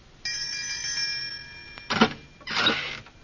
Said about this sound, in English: This must be the doorbell.